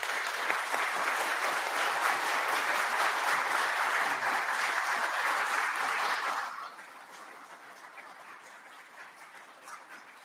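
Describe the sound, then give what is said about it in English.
A crowd claps steadily in a dense, loud wash of applause for about six seconds, then it drops off sharply to scattered, fading claps. “Y'all quit clapping. You're cutting in on my time.”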